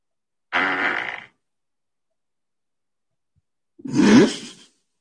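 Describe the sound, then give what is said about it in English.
Two loud, brief raspy blasts, the second one longer with a rising, buzzy tone, a fart with silence between the bursts and no talking. “I think she farted.”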